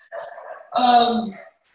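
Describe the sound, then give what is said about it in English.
Pet dogs barking in the background: two drawn-out, tonal bark-like cries, the second louder and longer, with no talking over them. “Sorry, my dogs are barking in the back.”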